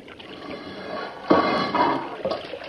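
Water rushes in and pours steadily, a broad churning gush with surging swells partway through, fairly loud with no voices.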